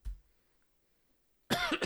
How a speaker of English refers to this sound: Sorry for the cough.